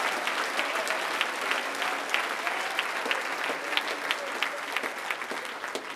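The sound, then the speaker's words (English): An audience claps their hands to thank the Lord during a sermon, a dense, sustained wave of applause, many overlapping claps forming a steady bright patter for several seconds with faint crowd murmur underneath. “Or you ought to clap your hands and thank the Lord that God is still reaching.”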